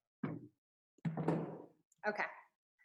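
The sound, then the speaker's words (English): A small chair is shifted, making three short bumping, scraping thuds in quick succession with brief pauses between them, clear. “I'm gonna sit down here and move this little chair.”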